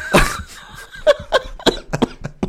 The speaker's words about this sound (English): That's a sneeze.